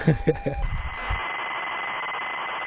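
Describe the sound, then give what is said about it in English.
A ZX Spectrum loading from tape: a brief steady pilot tone with a few low thumps, then a continuous harsh, buzzing screech of data noise at an even, moderate loudness. “And there we hear the delicious, I think is the word to describe it, the delicious sound of a ZX Spectrum loading.”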